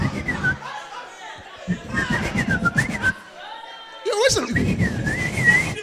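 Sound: whistle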